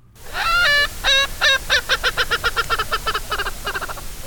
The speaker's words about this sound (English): We hear the song of a feathered fowl called Urkel's Franklin. Some may say the song is really more of a cackle.